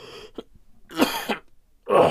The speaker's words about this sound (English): That my fucking, this whole shit hurts when I cough.